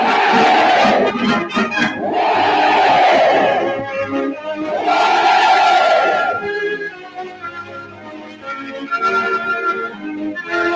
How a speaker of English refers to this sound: It was the 10th Army's turn to cheer the chief.